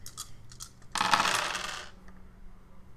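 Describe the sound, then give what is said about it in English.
Dice rattle and clatter across a hard table for about a second, after a few soft clicks of them being handled, rolled in a tabletop role-playing game for a thrown-dagger attack. The sound is fairly loud, with no voices. “So now I have so many dice.”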